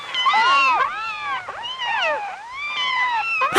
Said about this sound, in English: won't talk over the kittens. That's how much respect he has for cats.